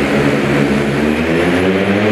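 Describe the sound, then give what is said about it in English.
A steady, loud whir of spinning propellers fills the air, the buzzing tone holding constant as a SkyMedic medical delivery drone made by Drone Delivery Canada flies by, with no voices; the drone brings medical supplies to remote communities in northern BC. “a product of Drone Delivery Canada, a company that's now partnering with UBC, Saladin First Nation, and the village of Fraser Lake to help bring medical supplies to remote communities in northern BC.”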